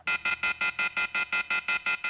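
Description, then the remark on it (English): A shrill electronic telephone tone beeps in rapid, evenly spaced pulses, about five per second, loud with no voices, from a phone left off the hook. “Would someone please hang that phone up?”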